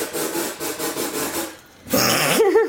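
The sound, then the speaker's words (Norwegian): A soda machine running in the kitchen, making a pomegranate soda: pulsing, raspy hissing bursts, a short lull, then a loud buzzing drone that climbs in pitch. No one speaks. “Nå blir det bråk da, for jeg må lage det på brusmaskinen.”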